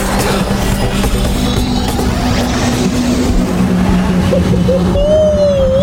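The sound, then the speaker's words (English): The loud, roaring engine of the Fantastic Car, a flying car, drones steadily with heavy rumbling noise, then a rising whine cuts in near the end as it seems to accelerate away. No one speaks. “Now, everyone, get on the Fantastic Car. The force field is starting to break.”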